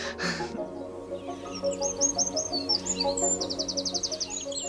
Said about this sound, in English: The wildlife along our stream side is just, it just lifts me up every day. As corny as that says, you know, bird life along it, they use it as a thoroughfare, and it's just fantastic.